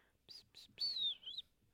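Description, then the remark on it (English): Someone whistles right into a microphone: two breathy, airy puffs, then a high whistled note sliding downward, finishing with a short rising chirp. It is loud and harsh, with no talking. “See? I told you I could whistle now. Don't do that into the mic. Don't whistle into the mic.”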